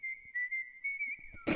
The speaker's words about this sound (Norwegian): Neida, da plystrer vi litt grann